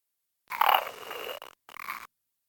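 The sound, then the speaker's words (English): On a recording, after Ed Warren asks it to imitate a pig, a voice imitates a pig's grunt with a long, raspy, nasal snort, a brief pause, then a shorter second grunt. It is fairly loud, with no other talk. “Imitate some animals. Imitate a pig.”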